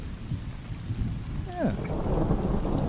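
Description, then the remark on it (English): Steady rainfall hisses over a deep, rolling rumble of thunder, with a brief descending whine partway through; no voices. “Nice rain.”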